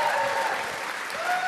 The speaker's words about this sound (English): Yeah, clap. Exactly.